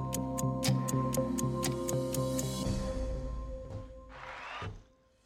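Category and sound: sound effect, countdown clock ticking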